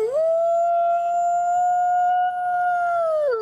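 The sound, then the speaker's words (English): A person imitates a wolf howl with one long, loud, steady note that rises at the start, holds for about three seconds, then drops away at the end. No other sounds. “No, I think it's wolves like a howl. I think it's a howl.”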